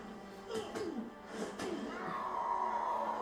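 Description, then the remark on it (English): A movie scene in which the character Kung Lao sacrifices himself, with strained vocal cries and a few sharp impacts, building into a sustained, high-pitched scream that holds to the end, fairly loud. “I love the scream right before this.”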